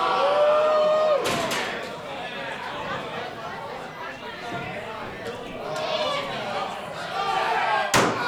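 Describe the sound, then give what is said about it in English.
A loud chair shot in a wrestling match, with wrestler Johnny Ruckus swinging a metal chair: the slam cracks out early, with a second sharp impact near the end, over a constant roar of crowd noise and indistinct voices. “Now Johnny Ruckus with the chair.”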